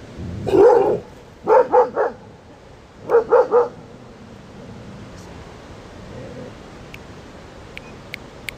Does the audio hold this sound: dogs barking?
yes